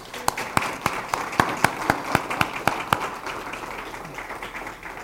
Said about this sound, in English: And he is faithful, and he says, so can we just give him a round of applause?